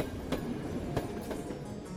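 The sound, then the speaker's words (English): A train rolls along the rails with a steady, dense rumble, broken by a few sharp metallic clacks at uneven intervals. The sound is continuous, with no voices. “The turn-in boat train, filled with passengers, was stopped in the tunnel against the red lantern signal light, waiting for the all clear.”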